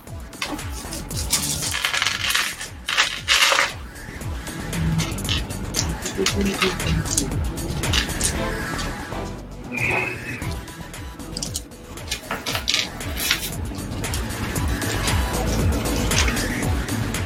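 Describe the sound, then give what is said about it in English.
A handful of dice, rolled for damage, clatter and tumble across a hard tabletop in a long, busy rattle of small clicks, fairly loud, with faint voices in the background. “I need a 6 centers. Got my center dice out.”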